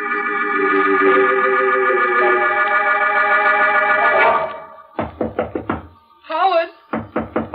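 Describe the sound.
A sustained organ-like chord fades out, then a quick run of firm knocks on the door of a locked room, a brief voice asking for the door to be opened, and another rapid burst of loud knocking.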